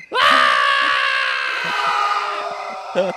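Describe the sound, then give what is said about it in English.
A voice imitates a man screaming after arching his back over the back of a truck and landing on thorns: one long, loud, strained cry that starts abruptly and holds for about three seconds, wavering slightly as it trails on. “Just screaming, and we're just standing there howling.”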